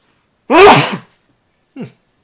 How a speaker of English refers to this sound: Man, there's something in my office that makes me sneeze. Get rid of one of these plants.